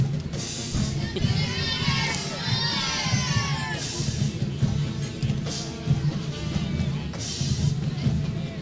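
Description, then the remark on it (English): A stadium crowd at a football game cheers in a steady, loud roar for the whole stretch, with shrill whoops and rising and falling whistles riding over the din. “Drew a crowd over, and got a big following over on that side.”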